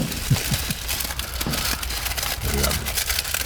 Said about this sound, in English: And again, negatives. Can we get a sound of rustling in the negatives?